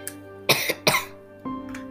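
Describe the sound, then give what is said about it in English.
Two harsh coughs in quick succession, a short wheezy catch after the first, heard over a steady tonal hum that continues underneath. No one speaks. “Then she doubled over, coughing.”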